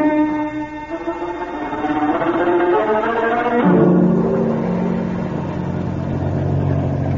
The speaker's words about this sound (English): This motorboat will get us to the cave in just a few minutes. If it took you folks overland, it'd take longer.